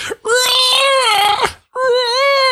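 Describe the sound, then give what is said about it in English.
A person imitates a seagull with two long, high, wavering cries, the first lasting over a second and the second after a brief pause, loud and nasal with no other talk. “I wasn't sure if you were going to take that approach or if you were going to say, well, I was following some seagulls here and then break into the seagull.”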